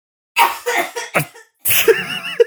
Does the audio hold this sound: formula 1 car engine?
no